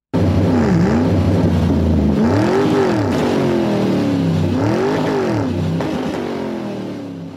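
A boat engine revs loudly and continuously, its pitch climbing and dropping in repeated surges, then begins to fade slightly as it speeds away. No voices.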